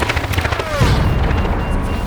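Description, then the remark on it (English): Sci-fi Concord blaster fire: a loud, dense volley of rapid energy shots, with a falling, whining zap partway through, over a heavy low rumble throughout. “How much damage can a Concord blaster do?”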